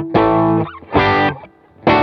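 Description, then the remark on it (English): Thick, fuzzy distorted electric guitar chords on a humbucker, struck in three loud bursts with brief gaps, each ringing with a heavy saturated tone before cutting off. “This, you could still go to the humbucker and kind of like.”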